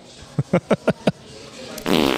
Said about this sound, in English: Or as he plays a fart noise. That's very on brand.